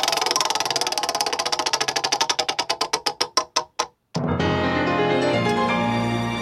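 A spinning prize wheel clicks rapidly, its ticks spacing out as it slows to a stop. After a short pause, a bright sustained musical sting rings out. No one speaks.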